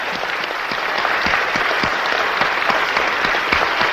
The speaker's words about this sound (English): Let's give Jesus a jolly good clap for what he's done for us. Praise the Lord.